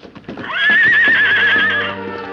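Silver, the Lone Ranger's stallion, in a pen, lets out a loud, shrill neigh that climbs sharply, then holds a long quavering trumpet for over a second before breaking off, startling hide hunters, with a few low thumps beneath it.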